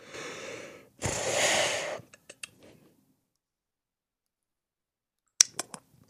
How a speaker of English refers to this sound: Just want to say sorry to everybody about all the weird mouth noises today and the breathing and the coughing.